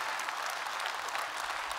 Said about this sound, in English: Well, let's give her a round of applause for helping us out.